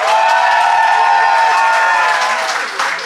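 Sustained applause from an audience voting by applause, a dense, steady wash of clapping at an even loudness that thins slightly toward the end, with possible faint cheering mixed in.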